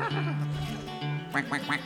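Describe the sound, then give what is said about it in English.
Ducks at a bunkhouse quack in a quick burst of three or four raspy, nasal calls near the end, following a moment of low, murmuring vocal sounds and a steady background hum. “Ducks! It's the ducks.”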